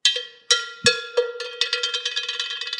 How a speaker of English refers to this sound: Hit that bell. Let's see. Yeah, let's represent what you got. Steam. What you got? Whoa. Just one loud one.